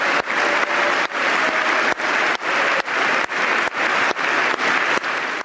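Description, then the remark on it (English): A crowd applauds steadily, with a man leading the clapping, many hands clapping in a dense, loud wash of sound that carries on without letup and without any voices. “He's still leading the clapping.”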